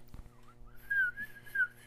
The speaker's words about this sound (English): Oh, that's the nice, beautiful bird sounds in the morning.